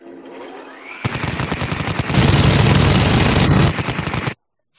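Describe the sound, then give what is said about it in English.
A minigun sound effect: a loud, sustained stream of rapid shots for about three seconds, growing denser and harsher midway, then cutting off abruptly into silence. No one speaks. “That's the minigun shooting.”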